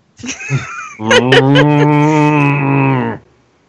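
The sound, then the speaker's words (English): A person makes a short vocal sound, then imitates an ox's moo: one long, low, droning call held steady for about two seconds before cutting off into silence. Fairly loud. “You hear an oxen mooing somewhere.”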